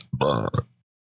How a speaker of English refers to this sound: And burps.